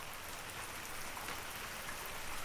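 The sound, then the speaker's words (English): Steady rain falls outside, a dense, even hiss of countless drops pattering on surfaces, moderately loud and constant throughout with no voices. “I would actually consider the rain to be one of my simple pleasures.”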